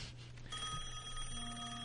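A telephone rings with a bright, electronic tone that sustains steadily, heard alone at moderate volume with no voices.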